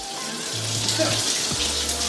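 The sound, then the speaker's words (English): A faucet runs steadily during a check of the water pressure on a tour of a rental home, producing a continuous, fairly loud rushing hiss of water with a faint low hum underneath for the whole stretch. “You mind if I check the water pressure and all that?”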